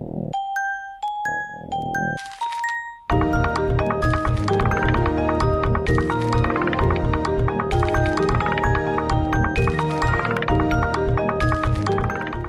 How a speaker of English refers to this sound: It's made solely out of sound effects from the Microsoft Windows software.